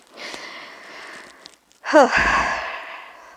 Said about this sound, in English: Okay, here I go with heavy breathing again. But that's fine. I tend to do that. It's fine. That's me.